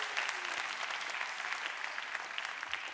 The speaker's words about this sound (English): Can we give a wild applause for our kids? Thank you, kids.